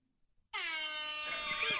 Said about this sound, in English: I am not controlling the air horn this week.